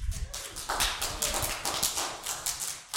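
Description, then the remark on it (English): An audience at an evangelism workshop claps together, a steady, dense patter of many hands lasting a few seconds, fairly loud and without any voices over it. “Ah, they clapped for me.”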